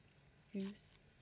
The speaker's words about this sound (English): Hang on, let me sip some of my juice.